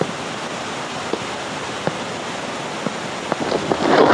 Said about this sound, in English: If this is the water of life splashing about, a single drop might turn you into Methuselah.